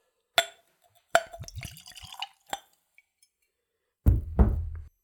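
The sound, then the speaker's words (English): A clear spirit is poured into a clean, tulip-shaped Glencairn whiskey nosing glass: a sharp glassy tap, a short burst of gurgling splashes, then a second brief pour a moment later. Quiet, with no talking. “So let's go for a pour.”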